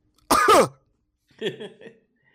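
human body sound, coughing and throat clearing

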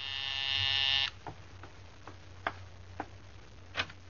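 household object, doorbell ringing

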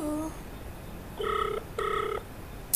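signal or alarm, phone call ringing tone

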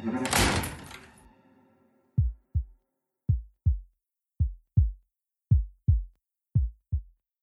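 household object, door being shut

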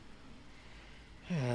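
human body sound, throat clearing

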